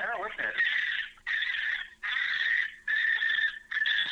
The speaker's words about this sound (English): That is terrible. Dude, that's a fisher cat. It sounds like a fucking bird.